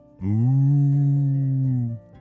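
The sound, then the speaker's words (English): A single long, steady, loud moo held for nearly two seconds before cutting off, a person's voice imitating a cow. “you sound like a real cow, said Ellie.”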